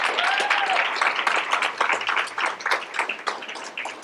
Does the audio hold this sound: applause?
yes